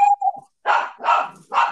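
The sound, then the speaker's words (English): A small Yorkipoo dog yaps: a brief high whine, then three sharp, fairly loud barks in quick succession, with no one talking. “Please pause for a station identification while I beat the fluff out of my Yorkie poo.”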